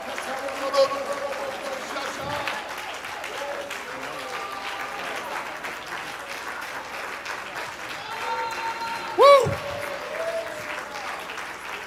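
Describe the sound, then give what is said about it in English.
An audience claps their hands to the Lord steadily and densely for the whole stretch, a thick continuous patter of many hands, with voices calling out over it and one loud whooping shout near the end. “Come on, let's just clap our hands right now to the Lord.”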